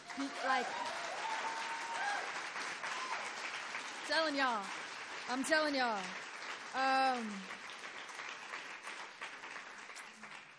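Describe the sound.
Steady applause from the audience at a reading fills the whole stretch, a dense crackle of many hands clapping, with a few voices calling out and cheering over it.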